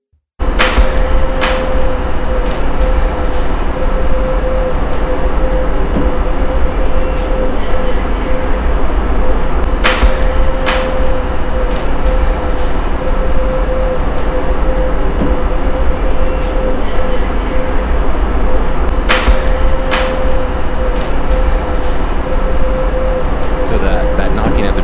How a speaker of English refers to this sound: you hear that whirring sound for sure, right?